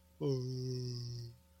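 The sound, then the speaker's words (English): A single drawn-out voiced yawn, fairly loud, holding a steady open tone for about a second before trailing off, with nothing else around it. “My number five, I'm going to go with the yawn to kick it off.”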